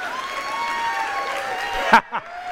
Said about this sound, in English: Look at y'all clapping for yourself. That's great.